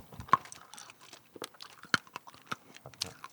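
Sharp crunching of sour candy balls with a chewy center being chewed, irregular cracking bites with wet mouth sounds between them, fairly quiet overall with a few louder snaps.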